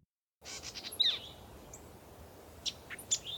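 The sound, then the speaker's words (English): On a spring morning, birds perched on a branch chirp: several bright chirps and short tweets ring out over a soft outdoor hiss, a cluster near the start and a few more toward the end, no voices present. “On a beautiful, blooming spring morning, two birds sat perched on top of a branch, peering into the house of their favorite human household.”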